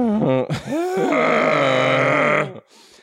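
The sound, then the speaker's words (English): A loud Chewbacca roar sound effect: one long, throaty, warbling bellow that rises, holds for about two seconds with a rich growling tone, then cuts off abruptly into near silence. “Where's the Chewbacca roar to put Marty in comedy jail?”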